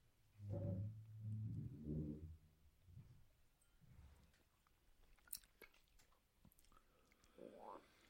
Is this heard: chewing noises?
yes